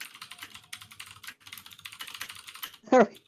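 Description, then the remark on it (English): Rapid, steady typing on a computer keyboard while googling Sandy Lane, a hotel in Barbados: a run of crisp clicking keystrokes for about three seconds, ending with a short burst of a voice. “Googling Sandy Lane.”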